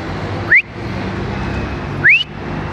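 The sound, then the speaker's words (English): Two short, loud rising whistles about a second and a half apart, each sweeping upward in pitch, over a steady low background hum: someone whistling to call their dog. “Oh, I'm calling my dog.”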